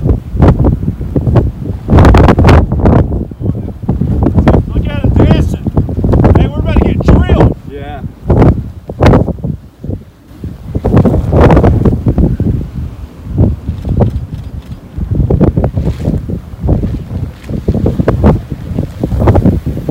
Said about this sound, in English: There's your tornado right there. Yeah, you can hear it. It really does sound like a whistle.